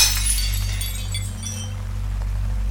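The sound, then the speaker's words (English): Glass of a church window shatters sharply at the start as mud and stones are thrown at it, followed by a scatter of tinkling shards falling and settling, with a steady low hum running underneath throughout. “in a frenzy, he slung handful after handful of mud churchwards until the inevitable smash of glass could be heard.”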